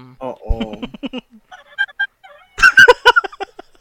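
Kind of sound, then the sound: bird, chickens clucking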